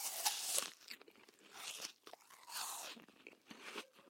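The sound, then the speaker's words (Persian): Crisp, wet crunches of someone biting into a whole apple, several bites followed by chewing, bright and crackly with no talking over them. “مثلا فکرش رو بکنید، اگه به جای این آب میوه های آماده پر از مواد نگهدارنده که کلی هم هزینه بسته‌بندیشون شده، مثلا به جای آب سیب خود سیب و گاز بزنید.”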